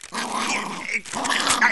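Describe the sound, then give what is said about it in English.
A dog holding a sheet of paper growls in two sustained, rough bursts with a brief pause between them, a raspy, buzzing snarl that stays fairly loud throughout, with no talking over it. “Hey, you Alpo snarfing rat faced critter, give me that paper.”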